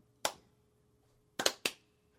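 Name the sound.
finger snapping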